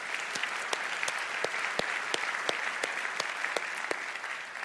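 A steady round of audience applause for the pastor, many hands clapping at once in a dense, even wash with a few sharper individual claps standing out, no voices over it.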